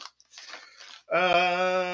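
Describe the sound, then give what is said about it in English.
Crisp crunching as someone bites into Bunker Hill Crunchy Cheese Crisps for about a second, followed by a loud, sustained voiced hum. “Bunker Hill Crunchy Cheese Crisps. I actually have two flavors here.”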